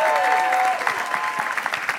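An audience bursts into applause, a dense, steady patter of many hands clapping at once, with a brief bright whistle-like tone riding over the start before the clapping carries on alone.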